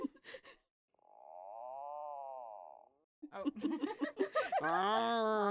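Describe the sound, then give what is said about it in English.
A puffin gives a long, wavering moan lasting about two seconds, then a busier run of groaning, chuckling calls that bend upward in pitch at the end, like a questioning grumble. “That one's a puffin questioning things.”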